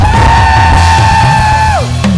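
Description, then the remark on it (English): A church audience screams and cheers loudly and continuously during a worship service, with one sustained high-pitched yell held above the din before it drops off near the end. “Somebody, if you know you're ready to praise God, jump up on your feet and scream.”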